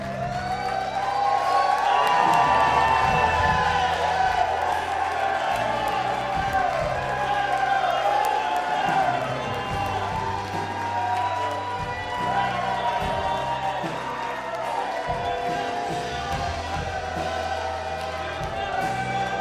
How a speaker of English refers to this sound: But I feel like we just need to, like, if you need to shout or clap or whatever it is for what God's done, I just feel we need to take a couple seconds to just do that.